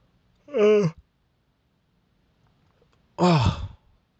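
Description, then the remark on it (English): A big, voiced yawn comes in two drawn-out, tonal bursts with a sliding pitch, separated by a few seconds of quiet. The second burst ends in a breathy, lower exhale. “That yawn was so big, it erased my brain.”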